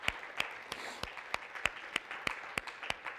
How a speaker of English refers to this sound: And again, yeah, amen. Y'all, round of applause for sure.